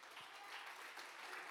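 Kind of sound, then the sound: crowd, faint audience clapping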